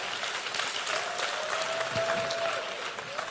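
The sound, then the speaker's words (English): An audience breaks into steady, dense applause, many hands clapping together in a continuous roar with a faint high tone running through it, and no one speaking. “I knew that applause was going to come, and he deserves another one.”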